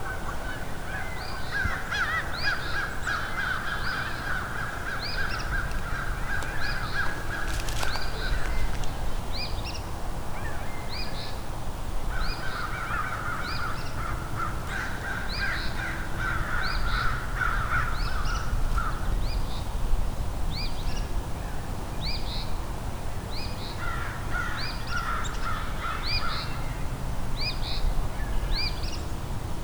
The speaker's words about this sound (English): American crow. It's about 10 crows here and an eastern Phoebe singing. And Canada geese.